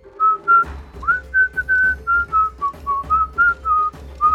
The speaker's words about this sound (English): And you can hear him whistling.